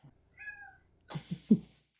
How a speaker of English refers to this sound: I didn't know we had a studio cat.